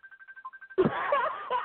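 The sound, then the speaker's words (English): A raggedy mobile phone rings with a rapid electronic trill of about ten short pulses, clear, then a burst of loud, noisy sound and voices cuts in. “what the hell that raggedy phone ringing for?”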